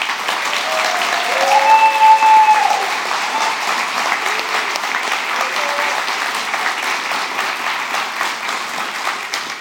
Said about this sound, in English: will you just encourage these parents right now and give them a round of applause?